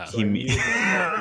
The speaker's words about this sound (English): Is that a dab? No, I had to clear my throat.